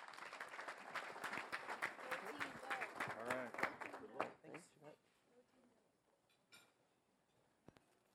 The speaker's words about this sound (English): How about a nice applause and welcome our panelists and speakers. Thank you.